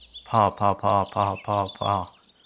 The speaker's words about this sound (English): Do you hear that? What is that? It's really chaotic. It is chaotic. That's a good way to describe this bird sound. That's one bird? Yeah, it's just one bird.